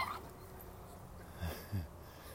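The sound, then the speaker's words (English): Two brief, soft yips from a small puppy about a third of a second apart, fairly quiet against a low background hum, with no talking. “Okay, say goodbye to your little puppy friend.”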